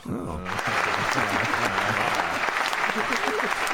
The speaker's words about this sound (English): I have to give her an applause on that one.